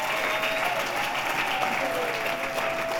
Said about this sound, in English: So once again, can we clap it up for the leadership here?